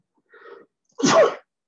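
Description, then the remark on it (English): A single sneeze: a soft, breathy inhale followed by a sharp, loud burst of noise, standing alone with no talking. “Excuse me. So bless you. Thanks.”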